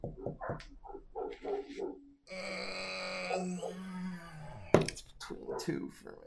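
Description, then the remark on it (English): A dog makes a string of short grunting yips, then a long drawn-out whine that sags in pitch, a sudden sharp bark, and more whimpering noises. “It's not the dog next door, by the way.”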